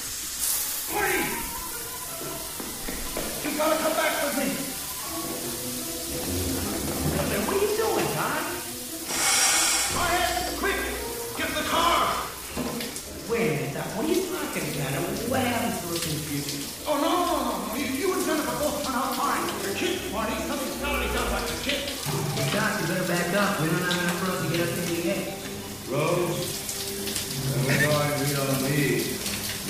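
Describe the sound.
A shower runs with a steady, close hiss of spraying water throughout, while a person's voice carries on over the top, partly masked by the constant rush.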